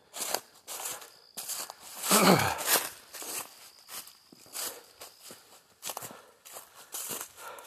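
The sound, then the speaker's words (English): Footsteps walk at a steady pace along a woodland road, through a section where a downed tree across the road was cut with a chainsaw, each step a dry crunch of twigs and debris, with a louder rustling crackle partway through as something snaps underfoot. “Here I'm walking through a section of downed tree that came across the road, and someone's chainsaw just enough to let me walk through, which is nice.”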